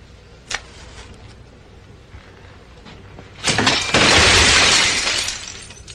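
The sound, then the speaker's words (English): A sharp crack, then a loud, sustained crash of a glass cabinet full of lab equipment shattering as someone leans against it, its bright, jangling debris spilling for about two seconds before tapering off. No one speaks. “The assistant gets up, slowly walks over, leans against a glass cabinet full of lab stuff.”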